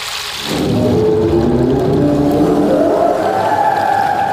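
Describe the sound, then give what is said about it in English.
A deep, drawn-out whale call from a film rises out of near silence after half a second, its low moaning tones sliding slowly upward and holding steady and loud to the end, with a watery rumble underneath. “No, no more whale. You can't speak whale.”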